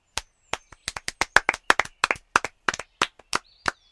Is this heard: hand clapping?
yes